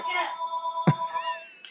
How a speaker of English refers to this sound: What the hell is that? A phone. That's a call.